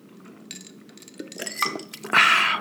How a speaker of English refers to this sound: So that's a sip. That's a slug going on to tin number four, brother.